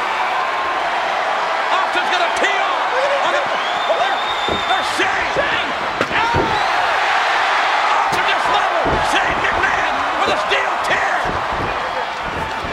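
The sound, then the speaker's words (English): A sharp, hard steel chair shot from one wrestler onto another cracks out over a loud, roaring arena crowd at a wrestling match, followed by a few more smacking impacts as the cheering continues throughout. “The sound of that chair shot. Snug chair shot from Steve Austin there.”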